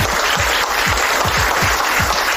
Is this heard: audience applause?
yes